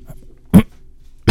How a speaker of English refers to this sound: I was going to whisper, but my throat fucked up. That wasn't a whisper. That was a cough, man.